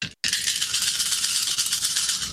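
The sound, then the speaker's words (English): A handful of dice rattling and clattering continuously for about two seconds after a brief silent gap, a dense, bright, fairly loud clicking with no one talking. “Actually have enough physical dice for this.”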